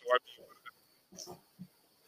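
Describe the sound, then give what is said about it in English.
A voice on a bad connection breaks up into short garbled bursts, separated by abrupt silent gaps, so speech keeps dropping in and out over about two seconds. “You in and out. It's in and out.”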